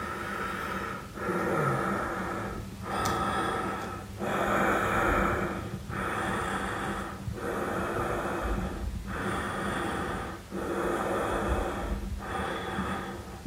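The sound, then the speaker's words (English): Heavy, rasping breathing near a bedroom doorway, with loud inhales and exhales repeating in a steady rhythm of about one breath every second, continuing throughout with no talking. “Then she heard heavy breathing near the bedroom's doorway.”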